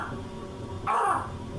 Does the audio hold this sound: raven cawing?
yes